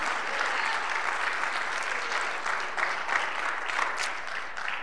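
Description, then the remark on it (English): A church audience claps hands in praise to the Lord, a dense, steady burst of applause from many people that holds evenly for several seconds. “Now, I want you to give the Lord a hand clap of praise, if you will, today.”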